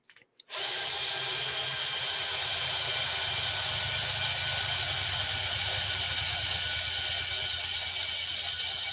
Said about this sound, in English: And for those audio listeners, that is the drill. Drilling. Yes, that is the drill. Great sound effect.